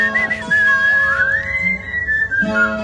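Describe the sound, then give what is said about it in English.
A person whistles like a bird: clear, sustained whistled notes with a smooth upward glide in the middle, fairly loud, over a steady low background hum. “Now that you said that, I think maybe the bird is just whistling because he hears music.”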